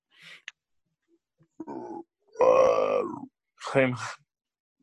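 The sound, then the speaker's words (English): A person imitates a whale call with low, groaning moans: a short breathy burst, a rough grunt, then a long wavering moan and a final rising cry. “I'm sorry, what was that? Whale.”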